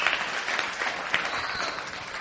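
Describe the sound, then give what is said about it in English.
A church audience applauding the worship band, a steady, dense wash of many hands clapping at an even loudness for a couple of seconds, with no voices over it. “No stinking way did you just do the polite clap.”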